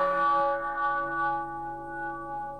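A deep cathedral bell sound, played from a bell app on an old iPhone, rings out once and hangs in the air, its rich layered tones humming steadily and fading only slightly over a few seconds, with no voices.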